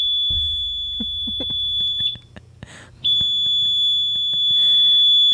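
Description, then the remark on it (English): A shrill, high-pitched electronic microwave timer alarm sounds steadily when the timer is done, holding one piercing tone with only a brief break, fairly loud, with faint background clatter beneath it. “You know how your microwave, when it's done with the timer, it goes beep, beep, beep, beep, beep, and then it waits for a while and it does it again.”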